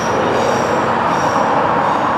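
A train rumbles steadily along the rails at close range, a loud continuous roar with a faint metallic whine on top, no voices.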